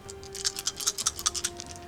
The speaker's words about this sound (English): Should've waited to shake my damage dice until you decided.